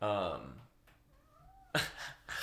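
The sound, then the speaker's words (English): A cat named Theo lets out a loud, drawn-out meow, followed by a fainter trailing mew, then a sudden burst of noise. “The cat came in.”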